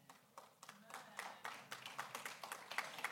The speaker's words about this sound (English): I'm glad you're clapping. I don't know exactly why you're clapping.